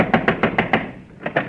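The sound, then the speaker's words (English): Someone knocks on a door: five quick, evenly spaced raps, a short pause, then two more knocks. The knocks are sharp and fairly loud, with no voices. “Thought I heard a knock. We did knock.”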